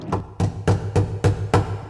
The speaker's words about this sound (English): A knock at the door.